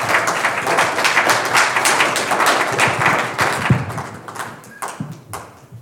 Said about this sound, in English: So if you guys want to give him a round of applause,